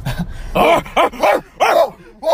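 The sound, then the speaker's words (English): A person imitates a dog with about five loud, rhythmic barks in quick succession, each bark short and throaty with brief gaps between. “Give a couple barks.”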